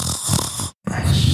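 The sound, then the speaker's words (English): A voice imitates the cute little snore of Pip, a small creature, as everyone beds down to sleep: two fairly loud rattling snore breaths, split by a brief moment of silence. “As everyone beds down to sleep, you hear the cute little snore of Pip.”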